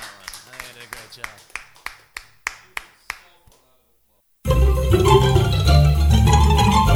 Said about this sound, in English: I'm gonna clap for myself.